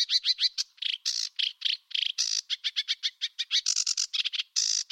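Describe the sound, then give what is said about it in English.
A bird sings a rapid, intricate song of high chirps, trills and warbles, the phrases tumbling one after another in varied repeating patterns, clear with no other sounds. “Some bird species have songs with very complex patterns indeed, such as this.”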